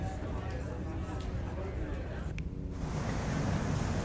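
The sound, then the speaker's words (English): A steady, rumbling wash of ocean surf mixed with gusting wind, filling the whole recording as a dense outdoor roar that briefly thins in the middle before swelling again. “It was outside. Like, yeah, you're like outside. An ocean vista.”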